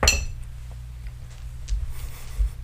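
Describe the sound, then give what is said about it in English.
Dice clack in an untied cloth dice bag during a tabletop role-playing game session: a bright clinking rattle at the start, then faint scattered clicks over a low rumble as the bag shifts. No one speaks. “Rookie mistake, didn't untie the dice bag before recording.”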